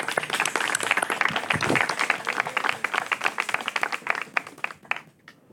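A crowd applauds steadily with dense, overlapping claps that stay loud and even for several seconds, then thin out into a few scattered claps before stopping.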